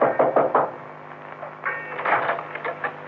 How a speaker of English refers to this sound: The sign read Peterson's boats for hire, day or week. I knocked for Peterson.